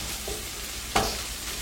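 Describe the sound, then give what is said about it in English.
A steady frying hiss fills the background, then a sudden bright sizzle bursts up about halfway through and slowly settles, as minced garlic is added to a hot pan already holding salt, pepper and onions. No one speaks. “We're going to go ahead and add our minced garlic.”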